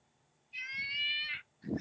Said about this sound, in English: Cat is screaming at me right now. Oh, hey, Alabaster.